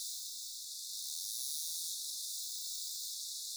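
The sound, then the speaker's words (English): Narwhal echolocation clicks, made while diving to great depths to find fish such as Arctic cod or Greenland halibut, come through as a dense, steady high-pitched crackle, like a continuous hiss of rapid ticks, holding even throughout with no voices and nothing in the lower range. “And they emit this sound when they are diving to impressive depths to find their fish, for example, like Arctic cod or Greenland halibut.”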